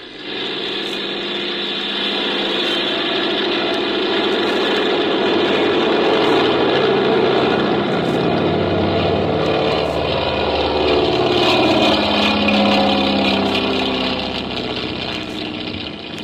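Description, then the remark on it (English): A small airplane engine roars steadily, swelling slightly as it revs up for takeoff, a continuous droning rumble with no voices over it. “Well, I guess we can take off. Here we go.”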